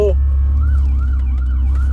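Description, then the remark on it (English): Emergency sirens from fire trucks and ambulances wail in repeating rising-and-falling sweeps, moderately loud over a heavy low rumble of traffic as the vehicles pass by. “We got some fire trucks and ambulances.”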